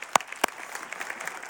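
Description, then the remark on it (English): A church audience claps for students on a student ministry Sunday, two sharp claps ringing out first before the scattered patter of many hands fills in, moderately loud, with no voices. “I was trying to think of something, like how do we clap for these? It worked out.”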